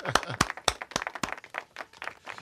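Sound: people clapping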